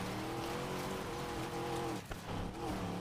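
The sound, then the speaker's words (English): A video game car engine drones loudly and continuously, its pitch rising and dipping with the revs, over a steady wash of road and tire noise, with a brief dip near the end. “But I do like the overall car sound, you know.”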